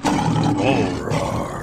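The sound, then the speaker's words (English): A lion lets out one loud roar, a deep rumbling growl that swells and holds for over a second before easing off slightly at the end. “That Lion's definitely going to beat my Bear up. That was a mean Lion.”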